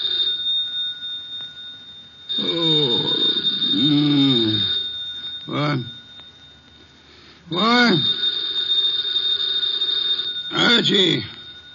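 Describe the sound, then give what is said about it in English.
A telephone bell rings in several separate bursts, each a few seconds apart, fairly loud, with voices sounding faintly alongside the rings. “The phone.”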